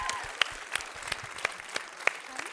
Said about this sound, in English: Round of applause.